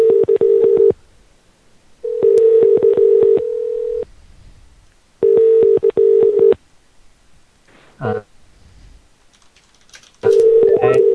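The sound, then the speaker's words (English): Loud telephone dialing tones sound in four separate bursts, each a steady buzzing electronic tone lasting one to two seconds, with quiet gaps and a brief rustle between them. “Where the phones ring.”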